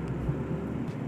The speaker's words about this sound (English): Yeah, I travel and podcast. So anytime I'm podcasting, most likely I'm in my car.